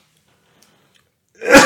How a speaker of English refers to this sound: I'm about to sneeze, excuse me. Bless you.